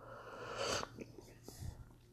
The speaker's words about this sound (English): By the way, excuse me, I'm going to take a sip of this amazing tribal coffee.